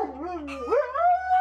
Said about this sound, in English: Do you want to sing with the dogs? Dude, freaking huskies are the best. They howl.